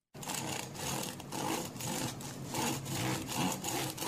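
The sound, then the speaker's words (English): A knife saws through a crusty loaf of bread, steady back-and-forth rasping strokes with a crackly, scratchy texture, fairly loud, with no voices. “Slicing of crusty loaf of bread.”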